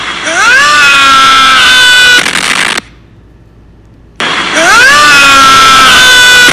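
A loud, shrill scream rises in pitch and holds, then cuts off into a second of near silence before the same piercing scream plays again, identical both times.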